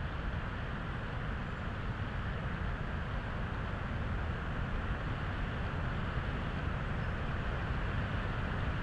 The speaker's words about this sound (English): That's Tanahudu Creek roaring in the distance and a Lincoln sparrow singing next to it.